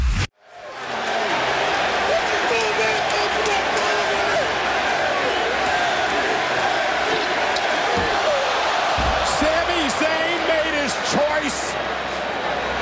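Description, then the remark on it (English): A packed arena crowd at a wrestling event roars continuously at full volume, a dense, sustained wall of cheering and screaming with occasional sharp shouts rising above it for over twelve seconds. “I'm trying to think of a louder pop that I've heard.”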